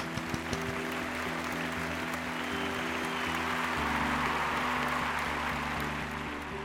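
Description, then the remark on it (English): Steady applause from a crowd giving thanks to a team for its work, dense continuous clapping that holds at a fairly even loudness for several seconds, with a faint edge of cheering mixed into the wash of hands. “Shout out. Some applause.”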